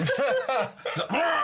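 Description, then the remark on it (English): A person clears their throat in a string of loud, rough, voiced rasps that rise and fall in pitch over about a second and a half, with no words spoken. “Clear my throat.”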